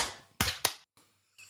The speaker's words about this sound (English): Okay. How about 1, 2, 3? 1, 2, 3. Clap. One, two, three.